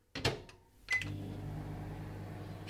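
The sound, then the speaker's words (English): A microwave door clunks shut and buttons are pressed, a short electronic beep sounds, then the oven starts up with a steady low hum as it heats a brunch of three Weetabix mixed with milk. “Mixed with milk and put into the microwave.”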